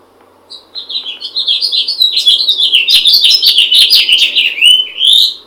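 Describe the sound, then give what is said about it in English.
A house finch sings a long, bright, rambling warble of quick, high chirps and slurred notes, loud, running continuously for several seconds with no talking. “My favorite bird sound is the house finch.”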